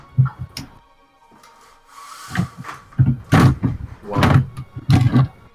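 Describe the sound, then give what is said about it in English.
A wooden desk being disassembled: a run of loud creaks, groans and scraping bursts, some with an almost growling, strained tone, separated by brief pauses and a soft hiss. “Somebody taming a dragon in the background? No, I'm disassembling my desk.”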